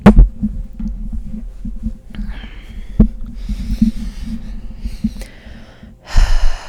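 Slow, deep breaths: a long airy inhale, a pause, then another breathy rush of air near the end, over a low steady rumble with no talking.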